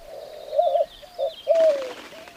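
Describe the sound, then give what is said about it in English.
Two small owls hooting back and forth in dense tree foliage, a run of soft, wavering low hoots with a second bird joining in, with a brief rustling burst near the end. “The hooting started, and then a second voice.”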